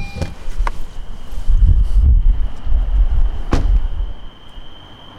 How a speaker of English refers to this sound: Here, check it out. There's, what is it, crickets?